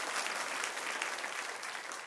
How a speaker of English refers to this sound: Actually, let's just clap. Someone started. I stopped it. That's my bad. Let her rip.